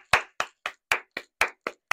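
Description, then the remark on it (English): Audience clapping in a steady, even rhythm: eight sharp, crisp claps about four per second, fairly loud, with silence between them and no talking. “You clap loud, give us some act.”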